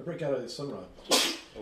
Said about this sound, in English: Bless you.